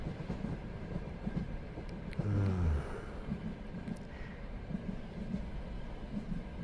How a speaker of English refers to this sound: Clickety clack. Clickety-clack. Yeah, that delicious movement.